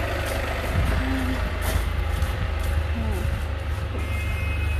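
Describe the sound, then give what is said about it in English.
A large bus arrives at a stop with a heavy, steady engine rumble and a brief hiss like air brakes, while muffled voices murmur faintly in the background. “Unfortunately, is it narcissistic for me to get a bus?”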